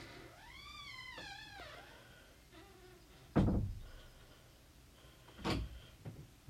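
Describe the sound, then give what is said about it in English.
A door creaks with a rising and falling squeal, followed by two solid thuds a couple of seconds apart as it is pushed shut, with no talking. “This is why you should keep the door closed, please.”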